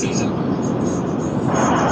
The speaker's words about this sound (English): Somebody's in an airplane.